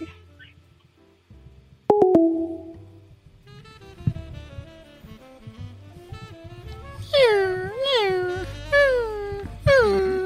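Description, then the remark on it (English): A person imitates one of their dogs dying, producing a string of high, wavering whimpering whines that rise and fall in pitch, growing louder and more pleading toward the end. “I shouldn't have done an impression just now of a dying dog.”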